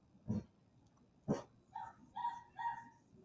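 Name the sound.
dog growling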